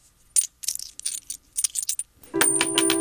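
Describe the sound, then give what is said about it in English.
Metallic clinking of quarters, taken out of a pocket and rubbed together by hand, in a series of short, jingly bursts, followed by sustained tonal music starting near the end. “And if he was worried about something, which he often was, he would take some of those coins and take them out of his pocket and just kind of like rub some quarters together.”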